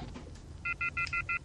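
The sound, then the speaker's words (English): A phone line rings with a quick run of six short electronic dual-tone beeps, clear and steady, following a brief stretch of low background rumble. “All right, so it's ringing.”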